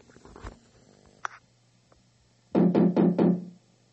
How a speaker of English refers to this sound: All right. All right. Let's knock on the door.